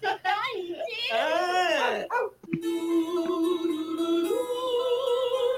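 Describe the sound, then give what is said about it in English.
A dog barks and yowls in drawn-out, wavering cries, then shifts into a steadier, sustained whining tone that carries on to the end. “Oh, now the dog turned on.”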